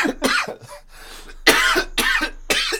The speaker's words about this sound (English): I can just die. I can just die on mic. I'm so sick of coughing.